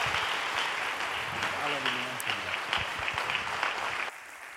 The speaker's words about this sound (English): South Metro, if you're physically able, would you stand to your feet and give a Thanksgiving round of applause to my dear friend,